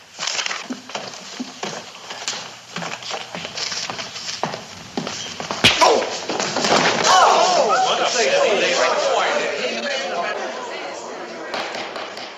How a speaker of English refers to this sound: punches him. Ah, it's glorious. So good. He goes down so hard.